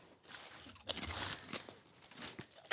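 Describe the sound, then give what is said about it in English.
Crisp crunching of someone biting and chewing cheese-flavoured nachos, a steady run of brittle cracks and crackles over a few seconds with no talking. “I'll try some nachos.”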